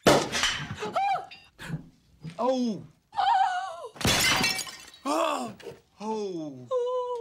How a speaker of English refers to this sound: The cork from the champagne hits the urn on the mantle, lands on the ground, and breaks, shatters.